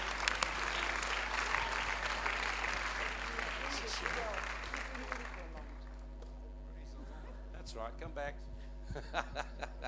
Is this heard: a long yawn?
no